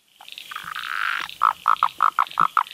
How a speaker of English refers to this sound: I can hear, actually there was a couple of frogs in the background that I heard first, but that's the Blue Mountains tree frog. And that has quite a variable call, like a little kind of intro and a growl.